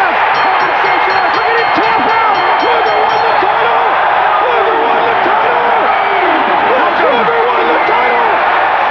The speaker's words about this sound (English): But before that, Hulk Hogan loses to Lex Luger clean. in August of 97. And the crowd goes wild because Hogan has had a year-long stranglehold on this damn belt. He's got him in the ring!